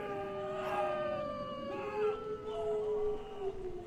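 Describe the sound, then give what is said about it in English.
Several wolves howl together in long, overlapping wavering cries that rise and fall in pitch, sustained and fairly loud throughout, with no talking. “Sounds like wolves to me.”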